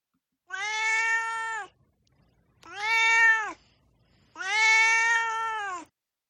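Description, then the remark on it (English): A male cat meows three times in a row, each call long, drawn-out and loud, with short pauses between them and no talking. “My cat, Dorothy, will share his opinions about this book.”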